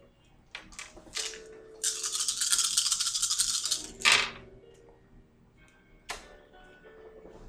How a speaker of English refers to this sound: Oh, I don't know why I'm grabbing 10 dice.